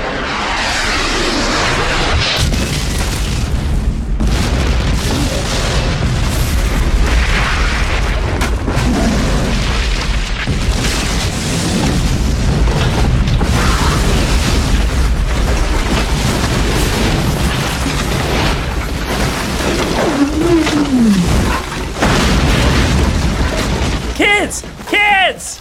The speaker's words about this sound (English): awesome drone strike.